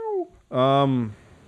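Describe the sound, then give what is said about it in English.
A human voice makes a cat-like meowing sound: a brief falling whine, a short pause, then a louder, drawn-out nasal cry, ending in quiet. “That wasn't supposed to sound like a cat for some reason.”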